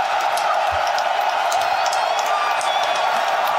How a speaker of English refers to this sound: What is going on here? Crowd in a frenzy. Everybody's on their feet cheering.